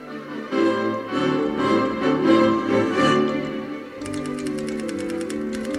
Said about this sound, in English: I still don't know what kind of song it is. It's your keyboard clicking.